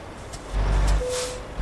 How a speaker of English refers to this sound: I'm going to park my truck in these parking spaces.